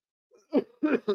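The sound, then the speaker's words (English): A man coughs several times in quick succession, three rough bursts with a faint breathy sound just before, and no talking. “Oh, he coughed.”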